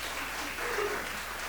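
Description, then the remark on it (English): An audience claps steadily for a second and a half in response to a call to love LA, a dense, even wash of many hands at moderate volume with no voices over it. “You can clap that.”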